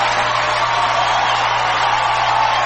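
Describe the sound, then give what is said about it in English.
A large audience applauds and cheers loudly, a dense, steady roar of clapping and voices that fills the whole stretch without a break. “To raucous applause.”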